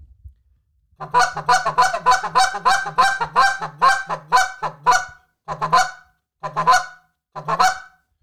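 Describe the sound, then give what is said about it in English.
A goose call blown as a stall cluck, or murmur cluck, to geese about 60 yards out: a quick run of short, mellow clucks and murmurs, about a dozen close together, then slowing to a few spaced notes; loud, with no talking. “I'll start doing a lot of what's called a stall cluck. And that's like a murmur cluck.”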